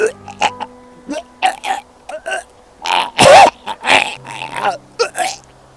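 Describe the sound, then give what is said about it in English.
A voice imitates the retching of a girl in a restaurant, a run of harsh, guttural heaves and gagging bursts that swell into a loud, rasping peak before trailing off into shorter choking sounds. “Then all of a sudden, there was this retching noise.”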